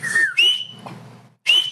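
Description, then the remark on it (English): Loud, piercing finger whistles sound in three sharp bursts, the first sliding slightly downward, with a short gap of quiet before the final shrill blast. “So the art of whistling loud.”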